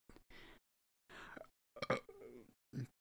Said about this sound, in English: I'm fucking burping, God. It won't stop. If I sound slower, it's because I keep having to burp.